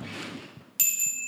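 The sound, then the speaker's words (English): A single bright, high bell ding, a Foley sound for a little shop doorbell hit as a door opens, rings out and sustains with a clear metallic shimmer, following a moment of low rustling noise. “And then she opens the door, and it hits a little doorbell, and it's like, ding, ding, ding.”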